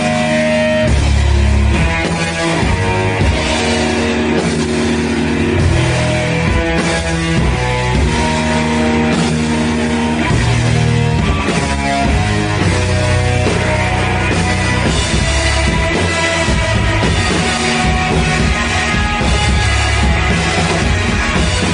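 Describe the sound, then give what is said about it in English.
A loud, continuous wash of layered tones, combining sound from a submerged microphone and one out in the open air, with a watery, murky, bloopy reverberation running underneath; no one speaks. “You can definitely hear, like you said, that watery, murky, sort of bloopy reverb thing going on in the background.”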